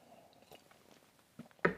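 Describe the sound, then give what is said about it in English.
A quick sip from a drink: faint quiet mouth noises, then two short wet slurping sounds near the end, the last one loudest. No one speaks. “So let's take a sub-drink, a little quick little sip.”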